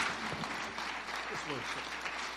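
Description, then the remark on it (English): A crowd applauds with dense, steady hand clapping that holds evenly throughout, with faint voices murmuring and calling out underneath. “Give them a big hand clap today.”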